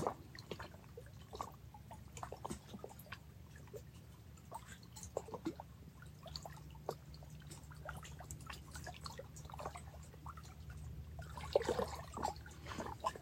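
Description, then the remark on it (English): Steady, irregular drips of water falling from melting icicles at Kichigami under the setting sun, many small plinks over a soft low background hum, with a slightly busier splashing burst near the end. “Let's breathe in the sound of the water.”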